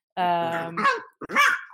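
A dog lets out a long, drawn-out groaning whine, then a couple of short, sharp barks in quick succession, fairly loud with no talking.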